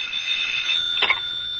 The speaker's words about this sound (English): And then suddenly the phone was ringing.